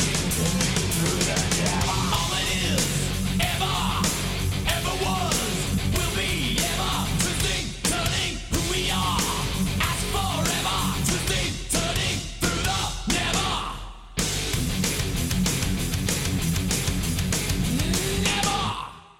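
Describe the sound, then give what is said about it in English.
The outro of a heavy metal song playing loud and dense, with distorted guitars and pounding drums under harsh yelled vocals, broken by a couple of brief stop-start gaps before the final crashing section. “I think the outro was kind of cool if I remember correctly. Let's just play it through and see.”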